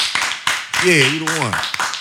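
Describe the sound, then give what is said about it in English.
A handful of sharp hand claps ring out, scattered irregularly through the moment, while a man's voice calls out over them in an excited, drawn-out tone. “Clap it up for that, man.”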